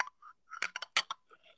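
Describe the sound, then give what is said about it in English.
Glass bottle bottoms rubbed together, giving a string of short, harsh grinding scrapes with a gritty, high squeal, uneven in rhythm and fairly quiet, with no one talking. “No, you know the bottom of the bottles.”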